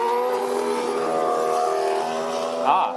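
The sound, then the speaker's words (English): A McLaren Honda Formula One racing car engine in Barcelona holds a loud, steady, high-pitched harmonic whine as the car goes by, then briefly swells and rises in pitch near the end, with no one speaking. “Here comes the McLaren Honda. So I will shut up and let you listen to it as it goes by, and you can get a sense of what the car sounds like.”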